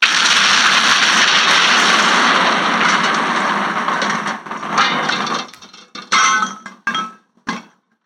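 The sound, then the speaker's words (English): A loud, sustained blast roar from nitroglycerin blowing open a safe door on a stopped train rumbles for several seconds and fades, followed by a few separate clattering thuds as debris drops and lands. No one speaks. “I love hearing all the little things landing at the end there.”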